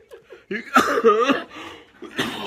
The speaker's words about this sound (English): You need to suppress that cough.